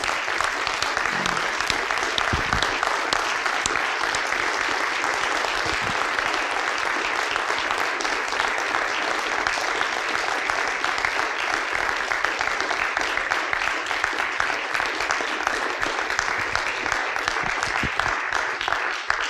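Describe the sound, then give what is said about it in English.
A large standing audience claps loudly and steadily for about twenty seconds, a dense, sustained roar of applause without pause or speech, honoring someone's seven years of service. “So I'd just like us to stand up and give Matt a roaring round of applause for his service here for the last 7 years.”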